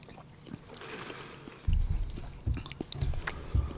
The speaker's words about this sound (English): I'm concentrating on eating this taco. You're leading this ship till I'm done chewing.